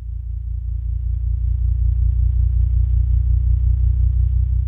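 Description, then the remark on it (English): Sonified gravitational waves, ripples in space-time from two colliding black holes, shifted into the human hearing range by MIT professor Scott Hughes: a deep, steady droning rumble with layered low tones that slowly swells in loudness over several seconds, with no voices. “We're hearing gravitational waves, the ripples in space-time made by the tremendous mass of colliding black holes.”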